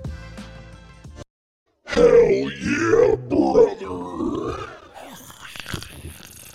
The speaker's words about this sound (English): What are you gargling on over there? It's a very dominant sound, dude.